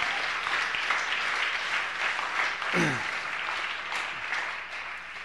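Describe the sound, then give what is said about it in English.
A crowd gives a steady, dense round of applause for the organizers of a donation and bidding event, holding for several seconds, a broad wash of many overlapping hand claps with a faint murmur of voices beneath. “Let's give a round of applause for those guys who organized.”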